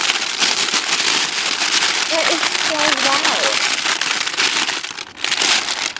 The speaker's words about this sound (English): This man is just crunching a bag, and it is like the loudest thing I've ever heard. Okay, now he's just crunching the chip itself.